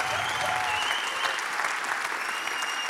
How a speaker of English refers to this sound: let's clap our hands for Jesus, everybody. Lass uns mal für Jesus klatschen, alle. Come on, make some noise for your Savior today.